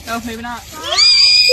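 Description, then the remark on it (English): A child's voice rises into a piercing, high-pitched scream that holds loud and steady for a moment at the end, right after a brief burst of vocalizing. “It was the scream that broke the spring. Listen to that. That kid's scream.”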